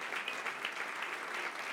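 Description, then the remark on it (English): Steady audience applause at LPR after Jenny Lin's live performance of Philip Glass piano etudes, on Philip Glass's birthday as he takes a bow, a dense wash of many hands clapping at an even level with no one speaking over it. “He's taking a bow. You can hear the crowd.”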